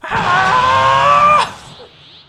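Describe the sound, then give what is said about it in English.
A person imitates a character's drawn-out, high, strained scream lasting just over a second, loud and steady, then breaks off abruptly into quiet. “And the screaming.”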